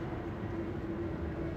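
A steady, low droning roar of an airplane flying overhead, continuous and even in loudness with a faint hum running through it, with no voices.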